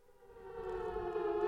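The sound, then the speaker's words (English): A rising wail of an air raid siren, steady harmonic tone swelling louder over a second and a half, heard alone with no voices. “You should just leave the air raid siren on all the time then if we're gonna talk about Adobe Flash.”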